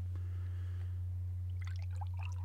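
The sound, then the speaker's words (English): Orange juice is poured into a glass, a faint run of small gurgles and splashes in the second half, over a steady low electrical hum. No voices. “Oh, you poured a big pour.”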